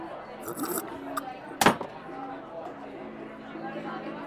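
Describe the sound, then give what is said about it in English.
One bright, sharp clink of drinking glasses touching in a toast rings out near the middle, fairly loud, with fainter taps before it and a low murmur of voices throughout. “You, might want your drink first. Sure. Cheers.”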